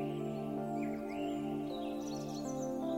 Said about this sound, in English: Can you hear the singing birds?